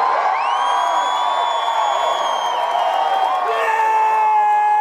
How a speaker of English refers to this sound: Yeah! Listen to those cheers.